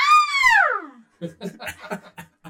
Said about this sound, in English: scream.